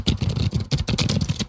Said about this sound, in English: So let's go ahead and shuffle these cards.